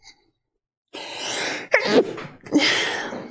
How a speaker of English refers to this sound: Bless you, ….